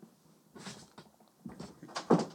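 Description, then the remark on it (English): A door bangs shut in the wind: a few soft knocks and rattles lead up to one louder, sharp thud near the end, heard alone without any talking. “Hit that door.”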